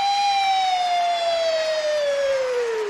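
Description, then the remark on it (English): A voice imitates an emergency siren with one long, loud, steady wail that slowly slides downward in pitch for about three seconds, with no other talking. “And the cars would come rushing across town, be woo, woo, woo, woo, woo. And it won't be no siren”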